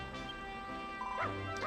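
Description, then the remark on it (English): A dog gives two short, fairly loud barks near the end, heard over a steady humming, tonal background with no one speaking. “Alright, the dog wants us to go west.”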